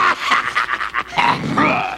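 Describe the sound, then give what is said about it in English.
A dog pants in quick, rhythmic breaths, then breaks into a sustained, rumbling growl that carries to the end. No one speaks. “The only one I think I can deal with is that growling Poe's daughter.”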